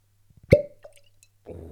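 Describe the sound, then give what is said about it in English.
A cork pops out of a bottle with a logo embossed on its top, one sharp, hollow pop and a brief ringing tone, preceded by a few faint taps. A soft rushing noise rises at the very end. “Here we go. Cheeky pop. No squeak.”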